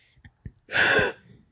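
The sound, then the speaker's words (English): A person lets out a single loud, breathy gasp, a sharp rushing intake lasting under half a second, preceded by a couple of faint mouth clicks and soft breaths. “Gasp in Spanish.”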